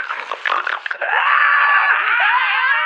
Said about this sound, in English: Maybe they haven't seen it, and maybe they're screaming because they're so happy to see you.